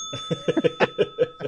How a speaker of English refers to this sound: Ring the bell for me on that one, DP.